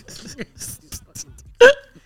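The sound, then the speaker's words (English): A sharp, loud hiccup jolts out near the end, following a couple of softer catches earlier amid low, muffled vocal sounds. “excuse me, y'all, if you see that, it sound like they got hiccups, I'm trying to get rid of it.”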